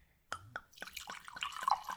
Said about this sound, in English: So that said, let's pour our Chardonnay for today.